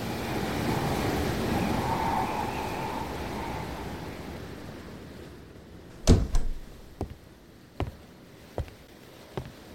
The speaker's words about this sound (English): Waves.